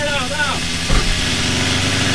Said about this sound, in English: Can you actually cut down a tree? Should you be cutting down a tree in Sherwood Forest? Don't put the chainsaw in here. He's still inside. Get outside with it. Take it outside.